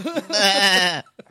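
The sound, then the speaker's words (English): A single drawn-out, wavering bleat, loud, likely a person's voice imitating a sheep's baa, lasting about a second before cutting off, with a brief faint noise after. “I just saw a bunch of sheep coming out, walking out of the film.”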